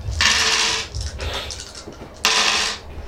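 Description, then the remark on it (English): Dice are rolled for scrutiny checks in a tabletop game, clattering and rattling in two bright, busy bursts, with a few lighter clicks and taps in between as they settle. Nobody speaks. “All right, you guys make me your rolls. What are you guys rolling?”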